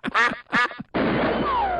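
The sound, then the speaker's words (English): A duck quacks twice in quick succession, loud, followed right away by a sharp gunshot blast whose harsh noise rings out to the end. “Kill the effing duck.”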